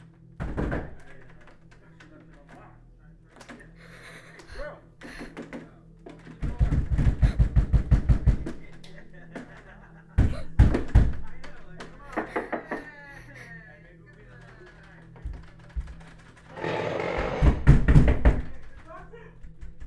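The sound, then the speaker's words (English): Loud, rapid banging on a door comes in several separate bursts, each a quick volley of heavy knocks, with a voice murmuring in the pauses between them. “At my door and they won't go away.”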